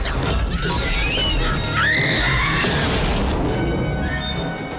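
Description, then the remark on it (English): In a movie scene, a raptor smashes into a glass reflection of Lex, who is hiding in a dish caddy, and is knocked out momentarily, amid loud, high screeching cries and a dense roar of impact noise, intense, with no talking. “And that raptor smashes into that reflection and gets knocked out momentarily.”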